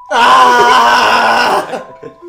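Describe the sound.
A voice imitates a happy space eel licking someone's face: one loud, sustained, warbling groan-like vocal sound lasting about a second and a half, trailing off into a few brief, quieter bits.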